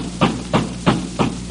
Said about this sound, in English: Open up! Who is it? Provo Marshal, hurry up! Uh-oh. All right. You don't need to knock the door down. I'm coming as fast as I can.